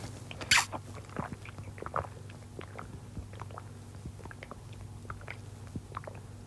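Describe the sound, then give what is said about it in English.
Someone drinks water, with soft wet mouth clicks and swallowing gulps at an irregular pace over a steady low hum, plus one sharper burst near the start. No one speaks. “Drinking my water.”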